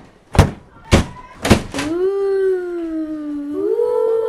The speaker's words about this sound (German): Und als sie dann in der Mitte zusammentrafen, fielen ganz langsam, aber gruselig die Türen zu.